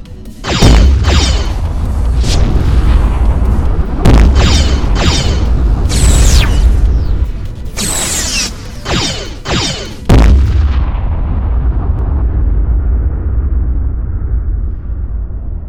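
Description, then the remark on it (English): Rapid bursts of sci-fi weapons fire from a fleet in a space battle crackle and zap over a deep, rumbling low-end roar, with sharp bright blasts clustered in volleys before fading into a sustained booming hum. “They're firing.”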